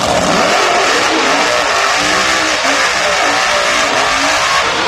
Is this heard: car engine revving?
yes